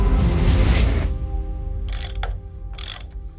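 A sonic wrench whirs with a steady, humming mechanical drone, cut by two short bursts of hissing, ratcheting noise after a rushing, noisy start. No one speaks.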